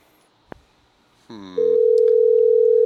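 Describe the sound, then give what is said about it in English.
A small click, then a short buzzy burst gives way to a steady, loud ringback tone from an outgoing phone call to a man's phone, humming on unbroken until the end. No one speaks. “Well, that one rang more.”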